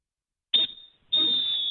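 A Fox 40 referee's whistle blows a full-time signal: a shrill, steady blast, a brief break, then a second longer piercing blast that carries on to the end, with no talking.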